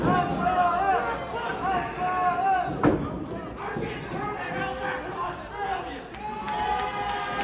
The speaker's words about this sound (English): He gets a pop for saying they're going to send her back to Australia. They cheered the racism.